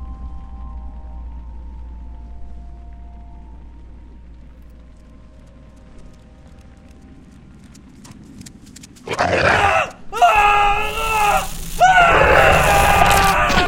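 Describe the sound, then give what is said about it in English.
A low, quiet rumbling hum gives way after about nine seconds to loud, harsh, wavering screams that come in several sustained bursts, piercing, continuing to the end. “We woke to screams.”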